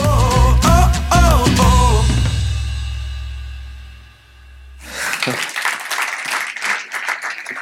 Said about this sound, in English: Don't clap for that. It only encourages those guys back there, you know?